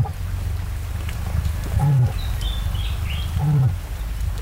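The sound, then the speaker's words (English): A cassowary gives two deep, low booming calls about two seconds apart over a steady rumbling background, with faint high chirps drifting in between; it is the lowest-pitched bird call in the world, barely audible to the human ear. “cassowaries are capable of making remarkable sounds”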